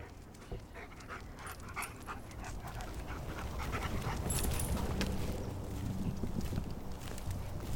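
A search dog pants steadily and rapidly, with rustling and scuffling movement around it throughout, during a search of Lake Fisher in Orlando, Florida, for Jennifer Kesse's body, one of two dogs brought for the search; no one speaks.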